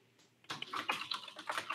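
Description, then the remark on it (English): Rapid, irregular clicking of fingers typing a comment on a computer keyboard starts after a brief quiet moment and continues steadily, fairly soft, with no voices. “I was typing a comment about how I might take up drinking tonight.”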